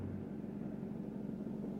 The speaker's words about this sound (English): We then get a very tense car ride.